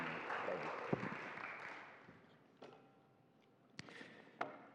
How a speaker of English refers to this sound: Give him a big, warm applause.